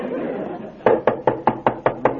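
Seven quick, evenly spaced, firm knocks on a door come in a steady rhythm after a brief stretch of low background murmur.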